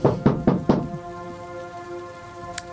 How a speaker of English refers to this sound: You're able to keep track of where you are as you hear a rapping on your door.